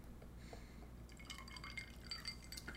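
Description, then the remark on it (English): Hot pepper sauce with a tropical twist splashes and drips from a glass bottle, a few quick wet spatters with faint clinks of glass, fairly quiet over a low steady background hum. “Let me do a little splash crayon. Right? Got to splash that crayon.”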